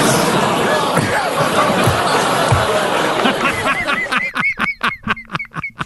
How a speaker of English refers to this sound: Wow. The groans from the crowd. What are you groaning at?